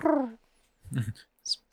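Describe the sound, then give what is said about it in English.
Someone imitates pigeon cooing: a short, falling voiced hoot, then a low throaty burble, ending with a quick breathy hiss. No words are spoken. “Maybe you should do pigeon noises.”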